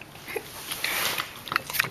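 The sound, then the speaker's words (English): A dog eats ketchup, with wet licking and smacking chews in quick, irregular bursts and small sniffs between them, fairly quiet and with no talking. “Oh yeah, you love eating that ketchup.”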